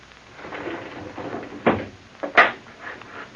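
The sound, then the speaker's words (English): A stuck wooden shutter in a dark room that has not been aired for years is tugged, with scraping and rattling building to two sharp, loud jolts as it refuses to give, then fading to faint creaks. No one speaks. “I'll open that shutter over there.”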